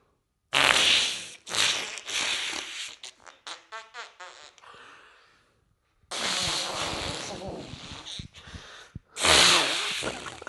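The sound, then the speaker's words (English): A string of loud fart sound effects, some long and blustery, others short and sputtering, coming in bursts separated by brief pauses, with a rapid rattling series in the middle. “And there's only a library of like 5 or 6 different fart noises.”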